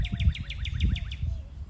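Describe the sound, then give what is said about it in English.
Birds fly through and sing outdoors on a cloudy, breezy morning, a rapid series of bright, repeated chirps in a steady rhythm over a low rumble of background noise; no one speaks. “We have prayer lilies or rain lilies blooming, and lots of birds flying through and singing.”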